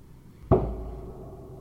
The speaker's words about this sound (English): I heard the sound, heard it as the commanding rap of something sharp and hard against the door, and not simply as the treacherous sound of my own fearful heart striking the ribcage, and fled like a child.